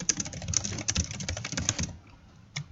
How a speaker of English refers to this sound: You're like reformatting it as I'm typing.